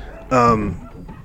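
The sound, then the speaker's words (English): A single sharp, loud bark from one of the dogs in a house, a brief harmonic yelp that rings out and fades quickly into quiet. “Those are the crazy dogs that we have in our house.”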